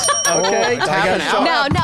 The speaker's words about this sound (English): Oh, she hit it. Safe word. You hit the bell, that means. Safe word.